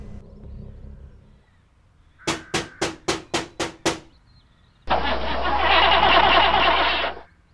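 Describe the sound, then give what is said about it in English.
A flooded car engine, full of mud, cranks in seven quick, even bursts without catching, followed by a couple of seconds of loud, steady rushing noise before it cuts off. No one speaks. “You've really flooded her. And I mean flooded. The old engine's full of mud.”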